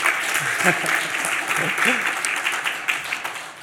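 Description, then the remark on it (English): A crowd at an evening event applauds themselves steadily for several seconds, a dense, even wash of clapping at a fairly loud level, with a few voices calling out underneath. “Give yourselves a huge round of applause as well.”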